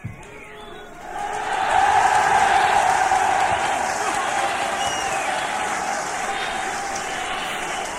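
A large crowd swells into loud, sustained cheering and applause, rising sharply after a second and holding as a dense roar of voices and clapping, heard from within the audience.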